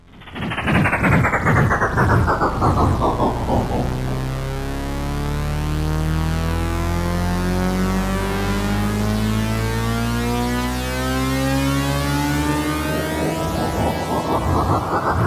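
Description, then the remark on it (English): A train rumbles past, loud and sustained for about fifteen seconds, with a rapid rhythmic clatter and a pitch that sweeps down as it arrives and rises again as it leaves. “Oh my god, a fucking train.”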